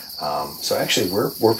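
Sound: crickets chirping at night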